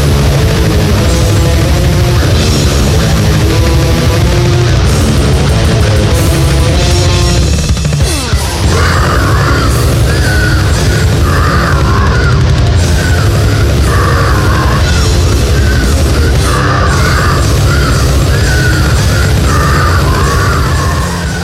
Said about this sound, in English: They're a death metal band from Baltimore, fronted by a ….